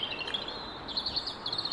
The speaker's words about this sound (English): I can see nightingales barely at the top of the tree. And several other trees where I live. One of the reasons why I live here is because of the birds, but never before have I heard these nightingales.